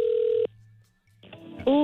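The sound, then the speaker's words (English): A phone call is dialed and rings: a steady electronic telephone tone holds for about half a second, then cuts out to a quiet low hum before a voice-like sound rises near the end. “We dial the phone, yeah. Calling a movie. It's ringing.”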